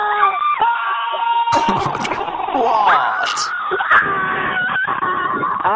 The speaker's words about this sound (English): And after the beep, you let out all of your frustration down the line. Okay. The screams are then uploaded to their website daily.